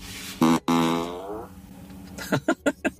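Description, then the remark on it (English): A loud, buzzy fart sound effect blares from a car's external speaker toward people outside the car, a short burst then a longer drawn-out one that trails off, followed by a quick series of four sputtering pops, all with a slightly tinny, speaker-like quality. “but now you can play it on the outside of the car.”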